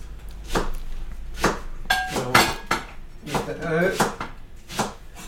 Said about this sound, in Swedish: Nu hackar han purjolök där borta också. Ja, nu tar vi den stora salladslöken. Purjolöken.